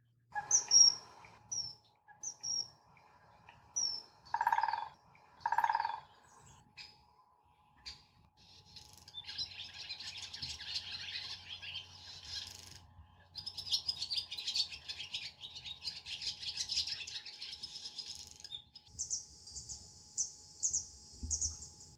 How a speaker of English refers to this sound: You can tell a type of bird by its song. Here, let me play you some different bird songs and tell me what you notice.